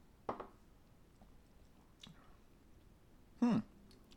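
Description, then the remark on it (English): A few quiet sipping sounds of rum with soft wet mouth noises, spaced a second or so apart and ending in a slightly louder slurp, with no talking. “We'll take a sip.”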